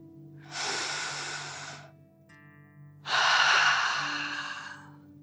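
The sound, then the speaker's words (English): Two long, breathy deep breaths, each drawn in through the nose and blown out through the mouth in a guided breathing exercise, each lasting a couple of seconds, separated by a pause, with a faint low hum underneath. The breaths are airy, the second one stronger. “Breathing in through your nose and breathing fire out of your mouth. Again, deep breath in and out.”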